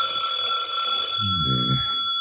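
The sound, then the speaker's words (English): A telephone rings for Mike Waring, the private detective known as the Falcon, steadily for the whole two seconds, a bright, continuous metallic trill, with a brief low murmur rising beneath it near the end. “Hand me the phone, will you, Angel? Don't answer it, Mike. Let it ring.”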